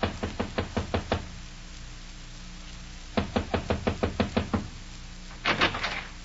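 knocking on a door

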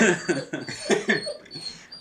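dog whimpering

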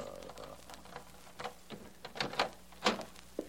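door being opened

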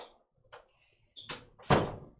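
door being closed

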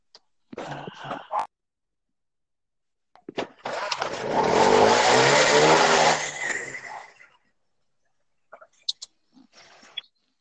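motorcycle engine revving

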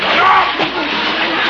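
water splashing

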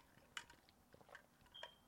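sipping water

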